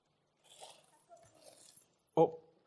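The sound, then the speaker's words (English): Soft metallic jingling of a set of keys comes in a couple of brief shakes, followed by a sharper, louder clunk as they change hands. “Have you got a set of keys? Someone got a set of keys?”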